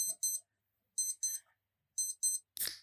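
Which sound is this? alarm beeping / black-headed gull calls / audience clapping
alarm beeping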